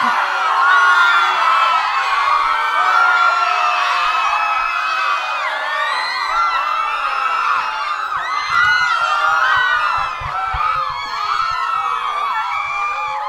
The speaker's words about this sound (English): Now, when I mean scream, I don't mean scream like, yay, we won. I mean scream like, something's happened. We need to get out of here now kind of scream.